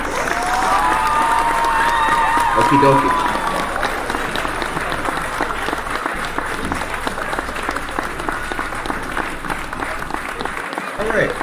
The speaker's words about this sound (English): Let me hit the clap for Monica as she goes.